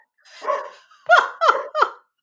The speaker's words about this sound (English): Why so many barks?